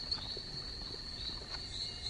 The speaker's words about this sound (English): There's the mosquito. There's a mosquito. Yep. Mosquito's currently biting him. Flies away.